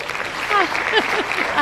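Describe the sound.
Steady crackle of hand clapping applause, fairly loud and continuous for its brief length, with a voice sounding faintly over it.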